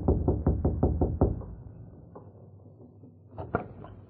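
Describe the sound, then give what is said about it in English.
Lem Foster knocks on the wooden door of Bob's mother's home in the evening: a quick series of about six firm, loud knocks, followed by a pause and then two more knocks. “They saw Lem Foster rapping on the door.”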